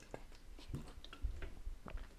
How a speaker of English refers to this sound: I'm gonna take a sip of water right there because I'm tripping over my words.